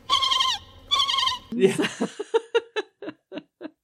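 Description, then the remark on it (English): A woman, a character in a film, imitates a dolphin: two long, high, warbling squeals, then a rapid run of short chirping clicks that slow and soften toward the end. No words are spoken. “And she starts squeaking like a dolphin.”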